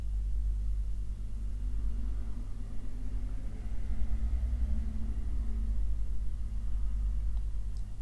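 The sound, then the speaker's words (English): A steady low rumble of traffic fills the background, swelling slightly midway as cars pass by, with no voices present. “Even cars in the background”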